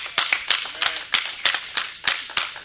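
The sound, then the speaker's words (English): A church audience claps together in praise to God, a dense, bright patter of many hands with regular surges in a steady rhythm, fairly loud and without any voices. “Give God a hand and clap of praise.”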